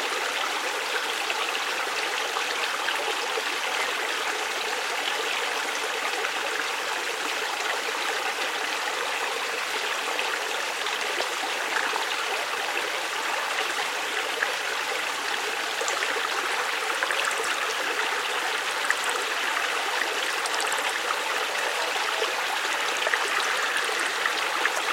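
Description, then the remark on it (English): Steady rushing of river water, a constant broad wash of flow with faint bubbling and trickling textures, sustained and even throughout with no voices. “River, we are river.”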